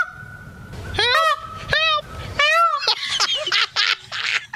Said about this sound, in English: there's your peacock sound right there. That's what they do sound like